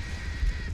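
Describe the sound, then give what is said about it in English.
A harsh, sustained bird screech from birds in a video game rings out over a low rumbling background, like crows cawing, brief and moderately loud with no voices. “Birds.”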